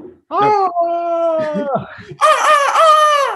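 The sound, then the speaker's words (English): A man loudly imitates a rooster's crow with his voice: a drawn-out, strained call that breaks briefly, then surges into a higher, brighter second burst. “I was waiting for you to crow for me.”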